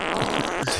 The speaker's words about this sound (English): Yeah, but now that Tesla can't fart while he's in drive, so it's useless to me. But he can park.